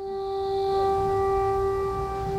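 Air raid sirens in Kramatorsk wail with a steady, sustained tone for the whole stretch, blaring outside while heard from a bomb shelter, over a low background rumble, with no voices.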